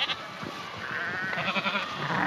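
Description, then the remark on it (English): A goat bleats in a long, wavering, quavering call that rises and trembles for a couple of seconds, with no one talking; goats pulling children in carts at a playground opened in 1888 in San Francisco. “And are those kids being pulled in carts by goats?”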